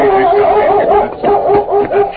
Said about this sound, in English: As Tonto dismounted, the Colonel's dog, a large German shepherd named Chief, circled Scout, barking a welcome.